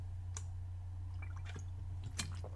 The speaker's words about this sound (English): All right, I'm going to need to take a sip of water for this one.